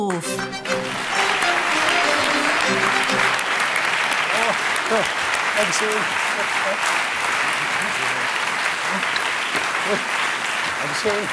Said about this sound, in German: Und deswegen an dieser Stelle großen Applaus und ich hoffe, ich spreche das hier richtig aus.